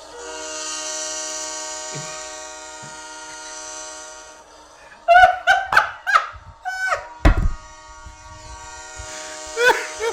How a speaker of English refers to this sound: We have to look at Google a diesel engine sound effect. Diesel horn sound effect.